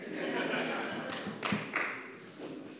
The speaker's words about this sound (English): Who's clapping extra over there?